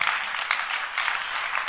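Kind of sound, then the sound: crowd, audience clapping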